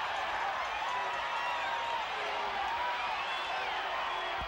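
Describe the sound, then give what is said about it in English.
A large pro wrestling arena crowd roars and cheers without a break as Jake gets a three count over DiBiase, a dense, loud wash of voices with scattered shouts and whistles rising and falling across the few seconds. “If you guys are listening to that crowd, just remember that Jake is a heel right now.”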